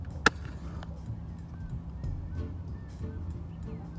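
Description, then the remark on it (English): Birds call faintly from below during a walk, a few short scattered cries over a steady low rumble of wind and background noise, with one sharp click near the start. “Can you hear the birds down there? Listen to that, bro.”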